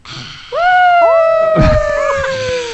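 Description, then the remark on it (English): Several dogs howl together in long, drawn-out wails that rise and slowly fall, with a brief rough yelp in the middle and no talking. “The dogs are barking, and that's just not my feet.”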